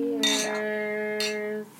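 A drink is poured into a glass in two short splashing bursts, one brief and one briefer, over a steady, sustained humming tone that cuts off just before the end.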